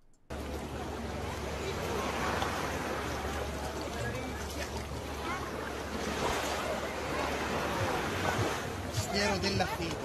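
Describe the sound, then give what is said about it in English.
Steady, rushing surf from ocean waves at a beach where a priest stands in the water, swelling and easing in broad washes, with a muffled voice surfacing briefly near the end. “Oh, and why isn't Father genuflecting like a priest? Because he's standing in an ocean.”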